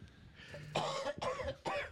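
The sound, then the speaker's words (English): Three harsh, forceful coughs in quick succession, fairly loud, each a short raspy burst with a brief gap between them. No one speaks. “Oh, we need a cough button.”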